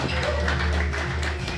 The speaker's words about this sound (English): That's the standard It's Just Banter round of applause.